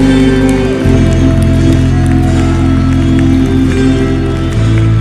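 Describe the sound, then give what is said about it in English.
A crowd claps and shouts unto God in a loud, steady wash of noise for about five seconds, with a low droning tone running underneath throughout. “Come on, clap your hands, all ye people, and shout unto God with the voice of triumph.”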